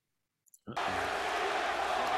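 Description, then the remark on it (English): After a moment of silence and a couple of faint clicks, a crowd's cheering bursts in abruptly and keeps roaring, loud, dense and steady to the end. “Just hearing the crowd. It's not even come out yet. It's all cheering.”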